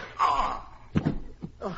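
A strained groan, then a dull, heavy blow lands, followed by another short thump and a faint gasp, as a man is knocked unconscious in a scuffle.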